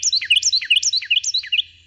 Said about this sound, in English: When a Carolina wren tips back its head and sings, something remarkable happens. A Carolina wren can sing so loudly that you almost have to shout to be heard over its song.